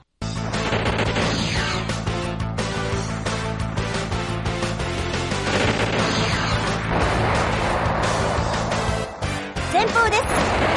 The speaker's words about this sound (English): That's the stuff. Explosions and 80s rock. Hell yeah.